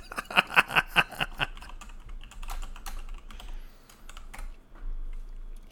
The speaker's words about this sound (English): I'm Googling it. Listeners is going to have to hear my keyboard. Googling.